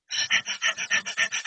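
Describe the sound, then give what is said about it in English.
A person imitates a dog panting: a quick, steady run of about ten breathy huffs, fairly loud, with no talking. “That's actually a great example because if you think of a dog when they're asleep, and then you think of a dog when they're panting, it's all upward chest breathing, even in a dog.”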